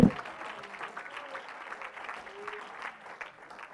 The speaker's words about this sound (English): Oh, come on, clap your hands to the Lord all over the building.